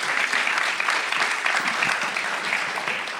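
A crowd applauds steadily, a dense wash of many hands clapping at once, fairly loud and sustained throughout with no voices breaking through, welcoming a man invited to come up to the front.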